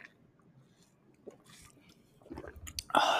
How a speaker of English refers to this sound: And I'm also famished, so we're both going to take a drink of water. Yes, we're going to take a sip of water.